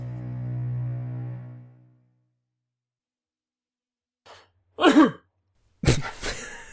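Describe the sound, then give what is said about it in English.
A low, steady hum fades out into silence, then a sharp sneeze bursts out, followed a moment later by a second explosive, breathy burst. “Bless you.”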